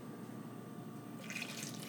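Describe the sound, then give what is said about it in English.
Water pours from a measuring cup, about 1/3 cup, into a thick batter, a soft steady trickle that turns brighter and splashier partway through, with no talking. “So you just hear me pouring water out of my measuring cup.”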